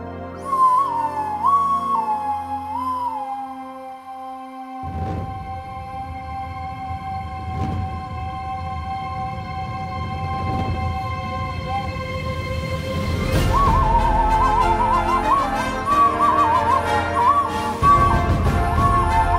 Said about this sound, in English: I've got the song right here. You want to hear it? Okay, here we go. Death Whistle to that song.